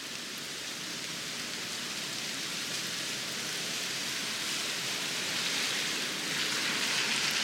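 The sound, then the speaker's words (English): Steady rain falls right outside an open window, a continuous dense hiss of drops with fine pattering texture, even in loudness, swelling slightly toward the end, with no voices. “It was actually raining right outside my window when I recorded this podcast. So I opened up the window and recorded some rain sounds for you to listen to while we're imagining this rain.”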